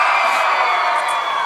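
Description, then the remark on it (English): A crowd applauds and cheers loudly and steadily to vote for a team in a lip sync contest, a dense wash of clapping with scattered whoops and shouts rising above it. “And if you think the Chubby Santa Sisters won, give them a round of applause.”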